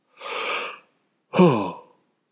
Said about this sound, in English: Excuse me. You knew it was coming. You knew that yawn was coming.